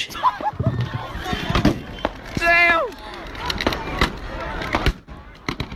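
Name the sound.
fireworks exploding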